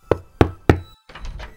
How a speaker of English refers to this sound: You decide, okay, I'm going to talk to my boss. You go and you knock on the door.